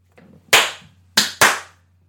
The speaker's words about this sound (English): That's me with my New Day Rocks clap.